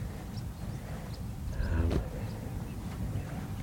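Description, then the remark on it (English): A single short tonal bird call, a curlew's whistling cry from somewhere up in the air, rises briefly out of a steady low rumble of wind and outdoor noise on a spit of land by a tidal creek, then fades. “Hear the curlews. There's a curlew up in the air somewhere there.”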